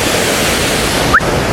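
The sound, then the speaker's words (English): A steady, dense roar of rushing water from a waterfall fills the whole clip, broad and constant, with a brief faint chirp-like blip near the end. “Yeah, I'm gonna do one in front of this waterfall.”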